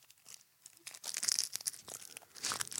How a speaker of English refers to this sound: Let's see. I'm going to... Might have to take the wrapper off before a sniff test is efficient. Sometimes it like bleeds right through the wrapper, man.